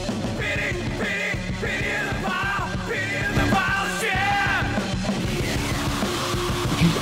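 Loud, sustained screaming vocals over a dense, heavy music track with pounding drums, the strained cries rising and wavering in bursts throughout.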